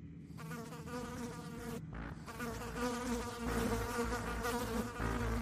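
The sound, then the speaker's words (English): Flies buzzing in a steady, droning hum with layered harmonic whine, briefly thinning about two seconds in before swelling louder again. No voices, just the continuous buzz of a black mass of flies circling a man. “The constant tapping of the flies colliding into his clothing gave him the willies.”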